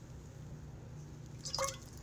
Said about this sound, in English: Let me take a sip because I'm talking too much.